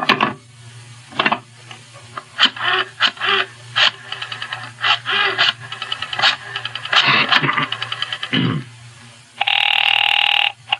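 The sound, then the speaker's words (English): A series of irregular clicks and rattles, like a phone being handled or dialed for a call to the Sky Top Club, followed by one loud, steady burst of telephone bell ringing at the end, over a low background hum. “Meanwhile, I must use the phone for a very important call.”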